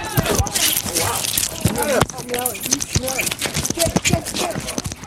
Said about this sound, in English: This is the sound of him banging his head and paws into those boards.